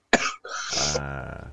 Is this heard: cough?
yes